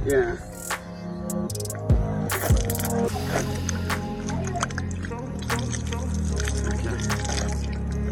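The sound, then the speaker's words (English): Water is poured over hands for washing, a steady splashing stream with dripping, running for several seconds over a busy background of tones and murmuring voices. “You want to wash your hands properly? Let me help you.”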